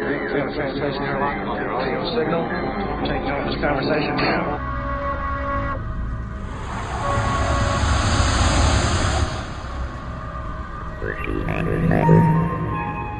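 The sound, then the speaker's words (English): A sci-fi UFO beaming sound effect: dense, rumbling whooshes swell into a steady, high-pitched whine that holds for a few seconds before fading back into churning noise. “That was a UFO beaming back at you.”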